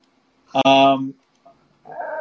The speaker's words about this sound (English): Hello, Ellie. That's Ellie the dog chiming in.